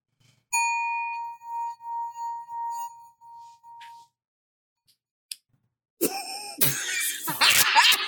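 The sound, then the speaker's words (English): A singing bowl rings with a sustained, bright metallic tone that wobbles in steady pulses for about three seconds before fading, followed after a short pause by loud coughing and rough throat noises. “Have you guys ever tried to do a singing bowl? That's not that easy, guys.”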